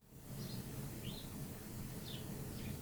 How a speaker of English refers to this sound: By the way, the fucking bird. I hope the listener can't hear that bird because it's just constant.